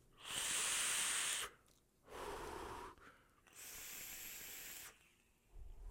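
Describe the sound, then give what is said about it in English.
Two long airy draws on a vape, each carrying a thin, high whistling tone over the rush of air, separated by a lower, breathy puff; no one speaks. “I don't know why mine whistles.”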